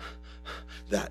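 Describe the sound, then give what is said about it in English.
A voice imitates a deer panting for water with a quick run of breathy huffs, four or five short puffs in a row, the last one louder and sharper. “David likens himself and us to a deer who is panting.”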